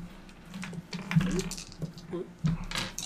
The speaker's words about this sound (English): Well, everybody grab four dice, and we'll roll them to build our initial dice pool.